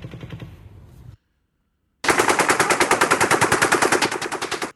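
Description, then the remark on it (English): A muffled burst of rapid fire, a brief pause, then a loud stream of M240 machine gun automatic fire recorded on a cell phone in Vegas, sounding somewhat like a helicopter, its rapid evenly spaced shots slowing slightly near the end. “Sounds like a helicopter, but it's actually gunfire.”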